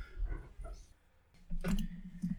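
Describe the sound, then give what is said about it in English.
A dog barks and yelps in short bursts, a couple of quick ones and then a longer, louder run of barking after a brief pause. “Are you going to keep the dog barking in?”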